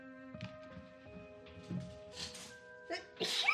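A sudden, fairly loud sneeze bursts out near the end, preceded by softer breathy sounds, all over a quiet, steady background of sustained musical tones.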